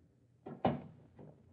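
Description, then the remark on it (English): A door is eased open quietly: a soft latch click and brief rub, followed a moment later by a fainter shuffle, all low in level with no voices. “You open it quietly.”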